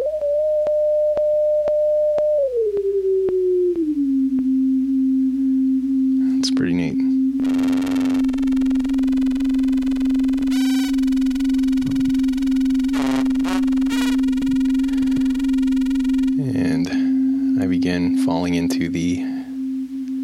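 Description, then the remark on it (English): A steady digital synthesizer oscillator tone glides up to a higher pitch and holds there, loud and continuous, while brighter buzzy harmonic bursts flare over it several times. “So that's a nice demonstration of how lovely digital oscillators can sound and how harsh.”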